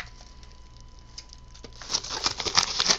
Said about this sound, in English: Ooh. Sexy packaging. Man, some of this stuff is so hard to open. All right, we're going to have to break out the scissors for this one.